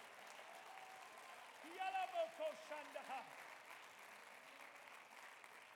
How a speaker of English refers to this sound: If you believe it, clap your hands and give God a shout.